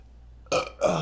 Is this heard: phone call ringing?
no